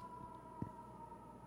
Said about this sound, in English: That's a late night Sunday siren. I hope they're okay, you know?